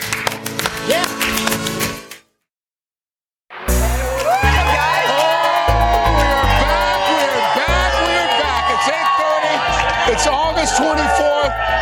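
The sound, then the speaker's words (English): A studio audience cheers loudly at a morning TV show, with many high whoops and shouts rising over a dense roar of voices; the noise cuts out briefly after two seconds, then surges back and holds steady. “We've got a really great crowd this morning.”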